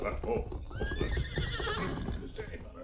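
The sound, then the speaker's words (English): Tonto's paint horse, Scout, lets out a loud, wavering whinny while its hooves clip-clop steadily as it approaches, the hoofbeats continuing underneath for the whole moment. “As the masked man sat in the shadows near the stage office, he heard hoofbeats approaching.”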